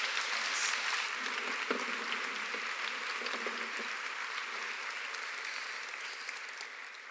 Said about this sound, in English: Thank you. You can clap again. They're amazing.